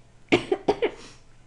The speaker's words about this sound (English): a weird cough.